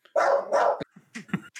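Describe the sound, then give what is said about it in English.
A dog barks twice, loud, the two barks quickly back to back, followed by a few softer, shorter yips or huffs. “I can literally say the word squirrel and my dogs will lose their minds.”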